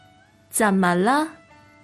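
A single drawn-out cat meow, fairly loud, rising then falling in pitch over under a second, with quiet background before and after.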